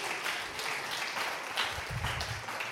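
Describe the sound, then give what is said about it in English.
A standing audience claps steadily in a dense, continuous wash of applause, with faint voices or shouts rising briefly underneath near the end. “Let's all stand and clap our hands and shout, this is love.”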